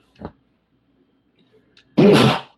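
A brief soft catch of breath, a short quiet pause, then one loud, explosive sneeze bursting out and fading quickly.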